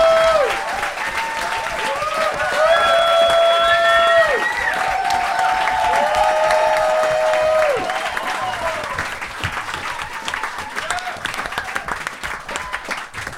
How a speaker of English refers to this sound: just cheering because it's ended, aren't you?